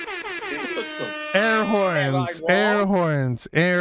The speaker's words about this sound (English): Air horns.